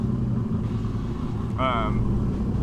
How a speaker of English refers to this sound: Wait for this car to pass.